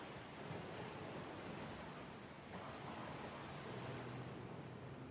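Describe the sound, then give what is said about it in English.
Loud, steady rush of churning river water parting after being struck with a rolled-up cloak, roaring continuously for several seconds, a broad hissing surge with a slight swell midway and no voices. “When it struck the water parted.”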